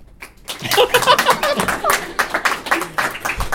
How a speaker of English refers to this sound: So, by applause, who do we think won this harrowing competition? Please applaud for one or the other.